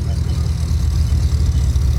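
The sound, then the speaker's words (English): A forklift engine rumbles loudly and steadily as it picks up and carries a car, raising it 20 feet, its deep, throbbing drone holding without a break the whole time. “It carried the car, then stopped. Raised the vehicle 20 feet then.”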